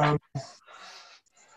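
A person breathing audibly: a brief voiced sound, then a couple of airy, noisy breaths, the longest one drawn out, with no words spoken.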